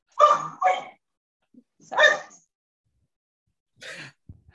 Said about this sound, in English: Dog getting fired up.